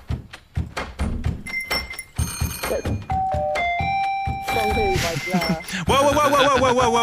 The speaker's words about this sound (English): I've tapped on the studio door, see if you can name it. This is how it sounded. Some of my best tapping this, I reckon,